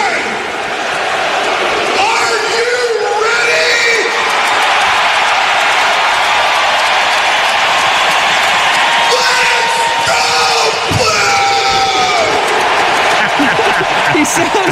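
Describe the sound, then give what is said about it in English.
A large arena crowd roars steadily throughout, with loud shouts and whoops surging above the din in bursts, like voices yelling and chanting together, before settling back into a dense, constant wash of cheering, as Brett Hull gets the crowd hyped before the game starts. “Getting the crowd hype before the game started.”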